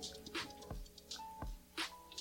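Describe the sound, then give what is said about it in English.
Quiet liquid sounds of a shot of liquor, poured to the brim, being taken: a few soft drips and splashes with light glassy taps and dull thumps at irregular intervals, without any talking. “let's take this shot, fellas, man. Salute to both of you guys. To the brim.”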